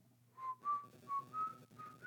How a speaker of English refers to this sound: A trick, whistling to beat the piper. Oh, quit that, whistling like a blowing viper.